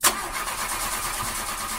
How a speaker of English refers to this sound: Wait, why am I hearing the broken car engine